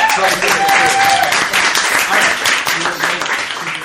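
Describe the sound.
A crowd breaks into sustained applause, dense clapping filling the whole stretch at a steady loud level, with a few voices and a brief whoop mixed in.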